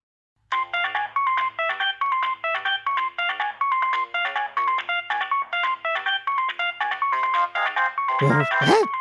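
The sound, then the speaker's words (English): A mobile phone rings in a pants pocket, its ringtone playing a fast, bright electronic melody of repeating chirpy notes, steady, with a burst of warbling tones near the end; no talking over it. “Why is my pants ringing,”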